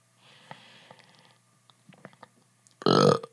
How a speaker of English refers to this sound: Woo! Okay, that's a burp.